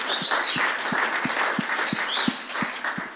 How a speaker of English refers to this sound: Hallelujah. Thanks, team. Let's give the team a hand clap.